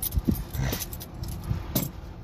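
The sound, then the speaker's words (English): A set of keys is tossed about, giving several short metallic jingles and clinks at irregular intervals, moderately loud, with no talking. “Stop throwing your keys around.”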